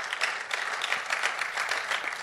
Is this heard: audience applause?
yes